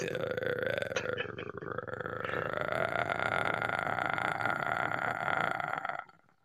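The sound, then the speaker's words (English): A voice imitates an animal growl coming from deep in a sinkhole: one long, low, gravelly rumble held steady and loud for about six seconds before cutting off abruptly. No words are spoken. “That sounds like an animal growling to me,”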